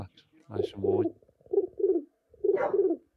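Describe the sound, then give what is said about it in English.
A person does a throaty impression of a West Midlands pigeon cooing: three low, rounded coo phrases, each with a rising then falling warble, separated by short pauses. “I've told you I can do the best pigeon impression nationwide.”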